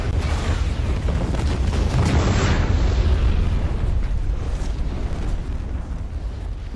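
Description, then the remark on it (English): A massive staged special-effects explosion, made with over 2,000 gallons of kerosene, 300 detonators and 24 explosive devices and listed in the Guinness Book of World Records, roars loud, its deep rumble rolling on for several seconds with a brighter blast surging partway through, then slowly settling like falling debris. No voices. “Took over 2,000 gallons of kerosene, 300 detonators, 24 explosive devices, and a mountain of dust and debris to fake this spectacular explosion.”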